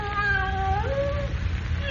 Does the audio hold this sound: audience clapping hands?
no